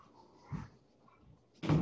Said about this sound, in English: Hold on, let me close that door. Can you hear all this?